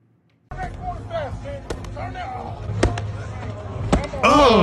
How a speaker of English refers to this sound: So pop a champagne and get ready for this pimp smack.